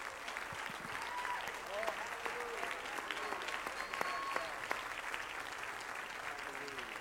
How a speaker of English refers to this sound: Can we give the Lord one more hand clap of praise?